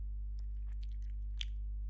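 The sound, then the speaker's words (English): Wet chewing with several short crunchy bites at an uneven pace, heard over a steady low electrical hum, with no talking. “I'm chewing now, so I can't...”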